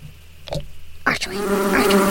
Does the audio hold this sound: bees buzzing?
yes